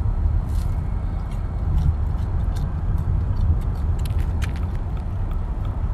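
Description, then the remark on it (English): A car engine slowly pulls away from a stop as the speaker drives their mother's car, a steady low rumble with no voices, while faint light clicks and ticks flicker through the upper range. “Oh my gosh, my mom's car literally does not take off. It's ridiculous. Okay, now it's taking off and it sounds stupid.”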